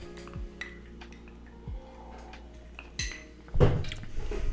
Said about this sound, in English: And we're going to do a cheers. Yeah, a cheers.